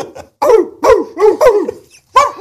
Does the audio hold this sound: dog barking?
yes